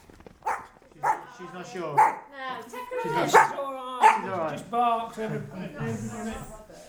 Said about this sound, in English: She's all right. Just barked.